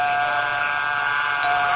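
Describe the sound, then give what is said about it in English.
A doorbell buzzer sounds in one unbroken, steady electric drone, harsh and mid-pitched, holding at an even volume for almost two seconds with no voices. “Let's ring the bell.”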